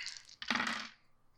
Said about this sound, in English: Oof. Not so good. I have a 17 with a 5 on the dragon die. Wow. The dice are hot.